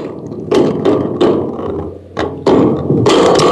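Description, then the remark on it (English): A rattle is shaken near a person's ears in a series of short, uneven bursts, roughly six shakes, each a crisp, bright clatter of loose beads over a steady low hum, with no voices. “But if you just allow something like this rattle just near their ears, that can have different effects as well.”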